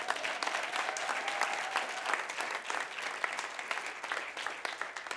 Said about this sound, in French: Did you clap for the both of them? Est-ce qu'on a applaudi pour eux?